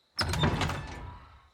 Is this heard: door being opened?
yes